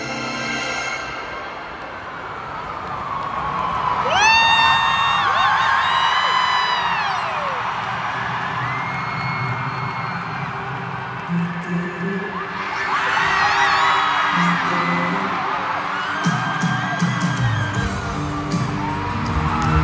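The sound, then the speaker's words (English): A huge concert crowd roars, cheers and whoops continuously, loud, with rising and falling siren wails sweeping over the noise early on and another surge of screams later, as performers come up from the ground onto the stage. “Suddenly, sirens emerge, and the crowd goes wild,”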